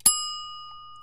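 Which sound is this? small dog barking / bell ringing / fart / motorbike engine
bell ringing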